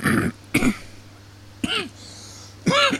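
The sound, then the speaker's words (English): Four harsh coughs come in short bursts spaced about a second apart, with a faint steady hum in the quiet between them. “Yes, it's actually something to cough about.”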